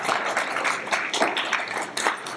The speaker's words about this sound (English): Thank you very much, ladies. Give them a round of applause for being awesome.